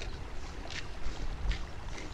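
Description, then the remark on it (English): An American bison bull wading across a stream to feed on grass: a few soft, regularly spaced splashes as water sloshes around its legs, over a steady low rumbling wash of moving water. No voices. “A bull wades across stream to feed on grass.”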